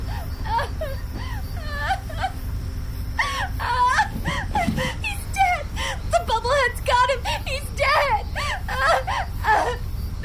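A woman weeping and whimpering in broken, wavering bursts of high, quavering cries, continuing steadily over a low background rumble with no clear words.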